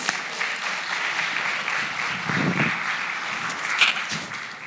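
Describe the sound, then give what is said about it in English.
An audience applauds steadily for several seconds for a young woman from Rockford, Illinois, a dense wash of many hands clapping at once at a fairly even, moderate loudness with no voices over it. “So let's clap for her.”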